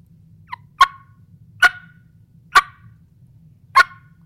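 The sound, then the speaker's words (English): Four sharp, single turkey clucks made on a mouth call, spaced about a second apart, with a faint short chirp just before the first, over a low steady hum and no talking. “And a cluck being the most basic turkey sound imaginable.”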